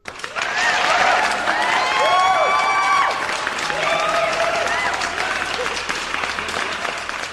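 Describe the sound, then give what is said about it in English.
An applause sound effect played to celebrate a fantasy football champion: a burst of crowd applause with whoops and cheers rises sharply, peaks loudly for a few seconds, then settles into steady clapping that continues to the end. “So year one DWI podcast, fantasy football champion, ring the bell, play the applause.”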